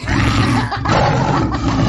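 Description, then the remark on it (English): A person gives a loud, gravelly roar in imitation of a tiger, one sustained growling burst lasting a couple of seconds, with no other talk. “I'm a tiger.”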